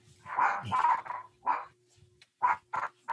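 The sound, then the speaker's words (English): A small dog, a chihuahua, barks in a quick series of sharp, high yaps, first in a rapid cluster and then a few separate barks after a short pause, clear. “Is that your dog, Eugene?”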